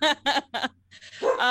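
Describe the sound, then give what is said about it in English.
A dog barks three times in quick, evenly spaced bursts, then lets out a longer, rising whiny bark after a short pause. Fairly loud, with no one talking. “Can you shut up McGruff the crime dog?”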